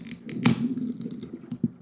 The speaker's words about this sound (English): We're going to open up a can. We're going to pour it into a glass. We're going to let it settle the way that you should. And we're going to see what happens. So here goes the open.